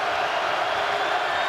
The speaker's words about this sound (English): Deep breath. Crowd gets loud, spins the ball, another deep breath, taking his time.